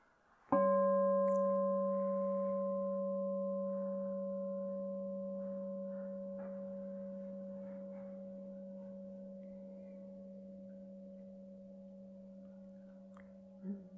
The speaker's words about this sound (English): So hearing and sustaining attention to sound, and then of the bell, and then the other sounds.